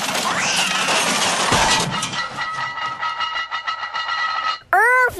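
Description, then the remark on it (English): Luggage crashes and clatters down a flight of stairs: a loud noisy jumble first, then a quick series of rattling bumps, ending in a short squeaky, warbling flourish. “Watch out below. I'm going to toss my luggage down the stairs.”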